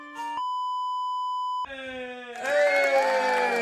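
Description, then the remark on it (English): A steady, high electronic tone holds for over a second, then shifts to a buzzier horn-like sound before a loud crowd erupts into cheering and shouting that fills the final second. “The crowd's clearly electric.”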